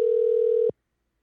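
A steady, loud telephone dial tone, heard while placing a phone call to a niece, holds one even pitch for under a second, then cuts off abruptly into silence. No voices are present.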